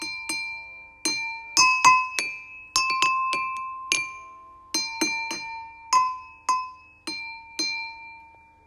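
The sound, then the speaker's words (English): Glasses holding water are tapped one after another, ringing out in bright, sustained tones at a few different pitches, with clear strikes in an uneven rhythm and no voices. “Glasses with different amounts, and one may be empty, and you'll see how the water colors and the sounds will change. These water sounds always change.”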